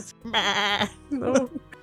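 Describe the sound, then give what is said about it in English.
A person mimics a goat with a wavering, nasal bleat, held for about half a second, followed by a shorter, rougher second bleat, fairly loud. “Anytime you enter a room, you're like, wait. Is the goat there? Oh, God. And then it's behind you.”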